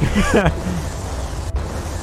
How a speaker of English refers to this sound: He's blowing up his whole operation. You hear all the explosions? My God. The special effects are off the hook.